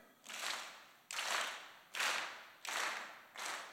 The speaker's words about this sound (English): Almost like when I said clap, everybody clapped. We're gonna do it again. Ready?